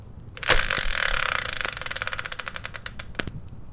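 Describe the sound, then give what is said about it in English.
A subject spinner wheel is given a turn. It whirs with a rapid run of sharp ticks that gradually slow and spread out as it winds down, ending in a few last clicks. No one speaks. “So, without any further ado, let's bring in the subject spinner and give it a turn.”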